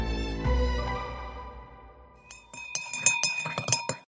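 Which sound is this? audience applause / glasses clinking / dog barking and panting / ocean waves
glasses clinking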